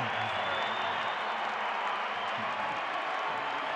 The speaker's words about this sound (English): 19-3 run. Timeout Cleveland. Utah by 11. Listen to the crowd.